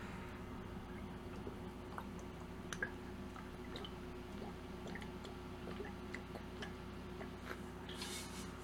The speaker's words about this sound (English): I was drinking water, people.